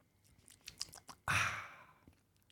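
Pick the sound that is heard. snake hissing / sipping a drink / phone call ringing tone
sipping a drink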